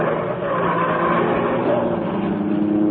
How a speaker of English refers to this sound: As the great car roared into life, a section of the wall lifted in front of it. The car turned into the street.